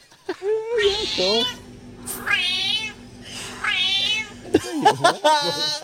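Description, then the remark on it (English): A cat meows four or five times in quick succession, drawn-out, wavering calls with a Scouse-sounding accent, fairly loud, with a low steady hum running underneath most of them. “pointing out that she thought a cat had a Scouse meow, and when you hear it, it's impossible to unhear.”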